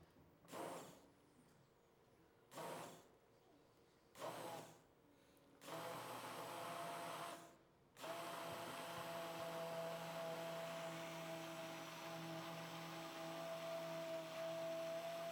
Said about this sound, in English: Començarem molt a poc a poc. Going to start very slowly. Immersion blender.